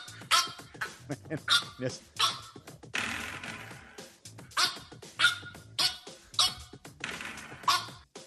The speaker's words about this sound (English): Like he's boxing in the gym, little sparring session, right? Got the squeaky bark. Got the squeaky voice and hitting the doorstop over and over again.